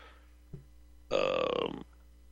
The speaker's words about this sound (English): I had to cough, clear my throat.